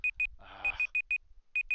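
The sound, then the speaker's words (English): A timer set for 45 minutes expires, beeping in quick pairs of high electronic tones, clear, with a brief burst of rustling noise partway through and a short pause before the beeping resumes. “So we'll just cut that part out, but the timer that I said for 45 minutes just expired.”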